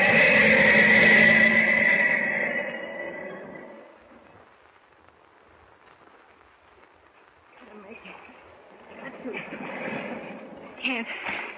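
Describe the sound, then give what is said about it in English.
A foghorn sounds one long, rich, steady blast for about three seconds, then fades into a quiet hiss before muffled voices and clatter come in. “I can just see a foghorn. Clara M. Must be. Must be a mile away.”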